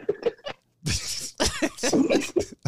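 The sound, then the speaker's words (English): A run of harsh coughs: three short hacks, a brief pause, then several longer, raspy coughs in quick succession, loud and with no talking. “Why do you keep coughing?”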